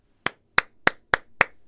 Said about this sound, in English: All right. I got a 5 clap. That's, you know, worthy of a clap.